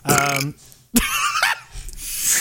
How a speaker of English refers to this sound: Speaking of burps.